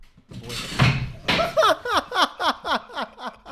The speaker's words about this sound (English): Donnie literally just like went, decimated the chair. His chair has just shattered.